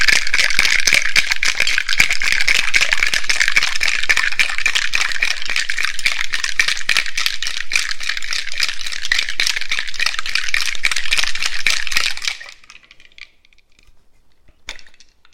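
A cocktail shaker with a Campari cocktail's ingredients is shaken hard with ice, making a fast, steady, loud rattle for about twelve seconds before stopping abruptly, followed by a couple of faint clinks.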